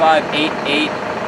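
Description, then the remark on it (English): An old-school diesel FedEx delivery van idles, its steady low rumble running through the whole moment while people talk over it. “Can you turn your truck off? that old school diesel too.”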